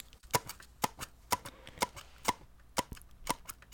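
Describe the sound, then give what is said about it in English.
Seven sharp, evenly spaced taps, roughly two per second, mimic the steady rhythm of footsteps walking, an ASMR imitation of the character Hiccup walking. Each knock is crisp and fairly loud against a quiet background, with no talking. “Hiccup walking.”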